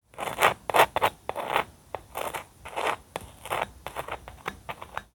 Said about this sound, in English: And this is what you hear when you attempt to spread that toast.